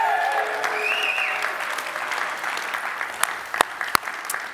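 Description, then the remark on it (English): An audience at an in-person location of New Life Church bursts into sustained cheering and applause welcoming the online campus, a dense wash of clapping with whoops and shouts on top, thinning toward the end into a few scattered, sharp individual claps. “And if you're at one of our in-person locations right now, can you join with me with a great big cheer and welcoming on our online campus right now?”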